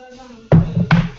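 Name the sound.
knocking on a door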